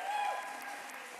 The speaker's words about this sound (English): Can everyone give Josh a round of applause here?